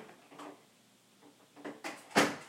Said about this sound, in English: Sorry, we have a dog and it's scratching at the door. Forgive me.